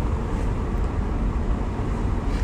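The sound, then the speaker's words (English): Cars go by in a steady, low roar of traffic rumble, loud and even throughout, with no distinct rise or fall and no voices. “I was scared of those cars.”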